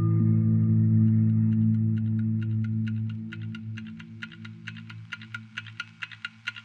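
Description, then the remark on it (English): A clock ticks quickly and steadily over a low, droning hum, the crisp ticks starting faint and growing steadily louder and sharper until they stand out clearly by the end. “But what would a cult be without a loudly ticking clock that counts down the seconds towards the inevitable end of the world as we know it?”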